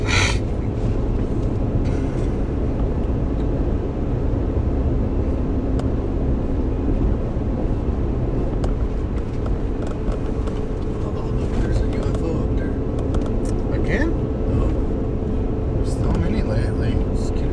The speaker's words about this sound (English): Yeah, see, because I don't know if that's an airplane or a helicopter or a... It's a UFO, man. A glider?